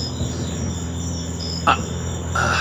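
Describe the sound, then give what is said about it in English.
A steady chorus of crickets chirping outdoors in a yard at night, a continuous high trill humming in the background with low ambient rumble, plus a brief brighter noise near the end; no one speaks. “Which is, I don't know if you can hear the crickets and nature.”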